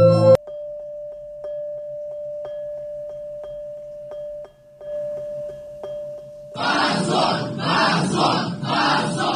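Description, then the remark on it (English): A steady electronic tone with faint ticking runs for several seconds, then a loud crowd in a room erupts in rhythmic, chant-like shouting of "Shame on you" in protest at a seven-year prison sentence, swelling in repeated bursts until the end. “Immediately, everybody started shouting. Shame on you. Shame on you.”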